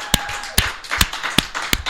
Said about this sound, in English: I wanted to make sure that got right into the microphone. Mm-hmm. There you go. Yeah, get that applause in there. Yes. We have a long tradition of the guest getting more applause than us, so this is normal for us.